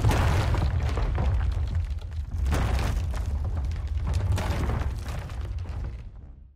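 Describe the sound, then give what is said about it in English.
Rapid, continuous booming from a grid of anti-air cannons (Icarus arrays) firing at Astartes, with explosions, in the audio drama Hounds of Bedlam; sharp bursts crack over a dense, rumbling low end for several seconds before the barrage fades out. “A grid of anti-air cannons perfectly aimed. They fire and swap the Astartes off their trajectory, sending them crashing to the forest beyond our trench line.”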